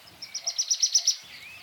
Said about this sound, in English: It's raining. It's a big rainstorm, and it's just about to stop. You can hear the birdies just coming out, tweeting just a little.